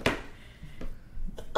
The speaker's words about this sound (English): I have to sneeze.